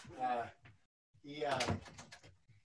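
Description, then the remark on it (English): A door creaks open in two drawn-out, squeaky pushes separated by a brief pause, the second longer and louder, with a soft bump as it settles, as a 14-year-old deaf and blind dog pushes it open. “He pushes my door open.”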